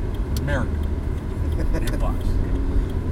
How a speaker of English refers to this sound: FedEx. A big FedEx truck. Yeah. What kind of packages are you carrying, dude? I can't fit a car back there.